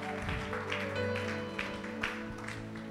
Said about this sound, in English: If you've been blessed today, can you just raise your hands and put your hands together and glorify God?